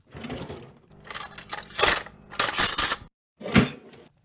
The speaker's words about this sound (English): I heard someone open a kitchen drawer, the utensils clinging together inside as someone rifled around. They pulled something out, slamming the drawer shut as they made their way back to where they came.